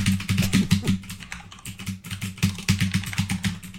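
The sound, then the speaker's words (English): Rapid, steady typing on a mechanical keyboard with Brown switches, each keypress a crisp clack in quick bursts with a brief pause midway, fairly loud, with no voices. “Yeah, I was going to say mechanical keyboards as I bang around on my Browns.”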